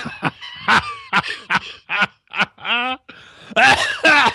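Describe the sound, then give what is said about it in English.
A man on a phone line with no cough button coughs loudly in a run of harsh coughs and throat clearing in quick bursts, with a rough, gravelly drawn-out clearing in the middle and heavier hacking coughs at the end. “That's how that's how you know it's working.”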